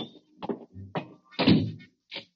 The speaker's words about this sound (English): All clear? Yeah. Let's go. Lock the door after we go in. Okay.